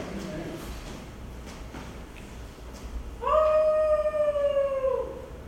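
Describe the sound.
A person imitates a werewolf howl: one loud, sustained, slightly wavering cry that rises quickly and then slowly falls. It comes after a few seconds of quiet.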